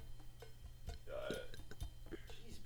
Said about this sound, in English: I had a burp again.